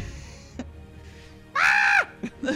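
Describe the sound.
A voice imitates Lisa Rinna's scream: one loud, shrill shriek lasting about half a second, held on a steady high pitch before dropping off, with a few faint short noises around it.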